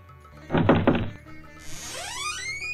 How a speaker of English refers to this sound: So now the police chief went to his house. He knocked on his door.